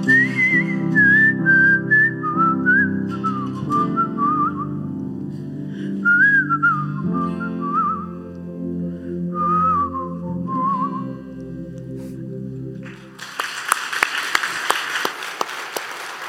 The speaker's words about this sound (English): Remember that one? Now it's going to be stuck in your head, right? You'll join me in just whistling that tune.